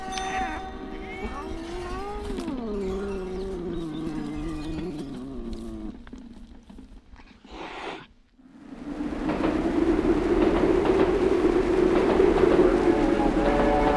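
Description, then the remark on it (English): Wavering, harmonic horn-like tones slide and fade over several seconds, then a loud, steady roaring rush of a passing train takes over and holds to the end. “Okay, we are ready to chase that train.”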